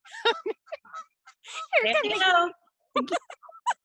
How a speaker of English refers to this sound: Here come the geese. I told y'all it was going to happen.